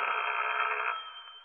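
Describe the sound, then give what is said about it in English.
A single ring from an old-style telephone bell at home, a buzzing, steady burst for about a second before it fades, with no voices. “I went home and waited for the phone to ring.”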